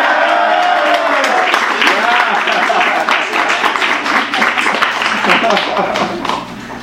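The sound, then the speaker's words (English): An audience applauds steadily for about seven seconds, a dense, loud wash of clapping with some voices mixed underneath, tapering off right at the end. “Keep the applause going because the cookies have shown up.”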